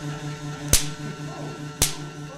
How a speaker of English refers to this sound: But when we approach the two, the strong attractive force between protons, the positive charge in my active dome, and the free-moving electrons in the passive dome, they get pulled across the air, and we create static electricity or lightning.